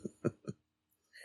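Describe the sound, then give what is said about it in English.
Three quick, fairly quiet coughs in a tight run, each a short rough burst, followed by a pause and then a faint breathy hiss. “I'm going to cough again.”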